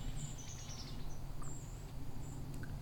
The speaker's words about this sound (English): All these seeps, white-throated sparrows.